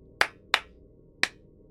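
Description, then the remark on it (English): Three sharp hand claps, as the disciple Peter clapping his hands: two in quick succession followed by a short pause and a third, each crisp and bright, heard alone over faint low background noise. “Then Peter showed up, my disciple Peter, and he clapped his hands.”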